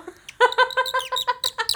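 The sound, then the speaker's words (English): A bird call whistle worn on the neck is blown, giving a quick run of loud, warbling chirps, about seven bright pulses in rapid succession, with no one talking. “This is a bird call.”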